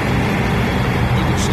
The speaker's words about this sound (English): Nice trucks, by the way. Yeah, they didn't even have to do the big flatbed, huh? No, there's a. Didn't do the trailer, just the truck. No, just the truck. That's some plain rigs right there. They are. There they come.